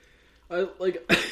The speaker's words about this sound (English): And so we apologize in advance if he's going to be debilitated by coughing and sneezing and overall congestion, but we're gonna soldier on. Who has like ragweed induced coughing?